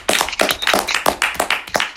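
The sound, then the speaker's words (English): A short round of applause for Ernest Moss, the inductee of the coach's poll: about a dozen sharp, crisp hand claps in a quick, fairly even rhythm, moderately loud, with no voices over them. “Round of applause for Ernest Moss.”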